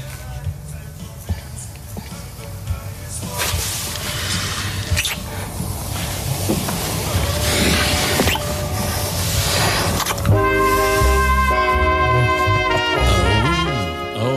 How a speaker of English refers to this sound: I heard that. Did you hear the smooching?